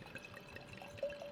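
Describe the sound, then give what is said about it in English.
Wine trickles into a small glass in a short, steady pour, its faint ringing tone rising slightly as the glass fills; quiet, with no talking. “I'll pour you a small glass because it's probably going to be shit.”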